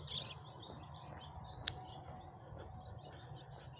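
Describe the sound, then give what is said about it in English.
Birds chirp faintly before sunrise, with a couple of short, high tweets, one near the start and one sharper call midway, over a steady low outdoor hum. No one speaks. “You hear the birds, but they're chirping.”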